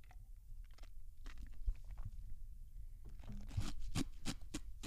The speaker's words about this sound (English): Sorry, that's an ice cube.